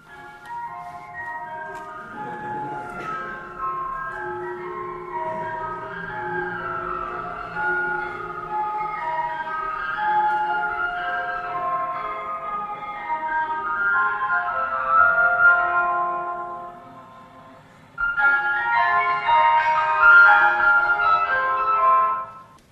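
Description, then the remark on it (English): An old ice cream truck's tinny electronic jingle plays a bright repeating melody, pauses briefly, then starts the tune again. Fairly loud, with no voices over it. “Every ice cream truck pretty much plays that tune.”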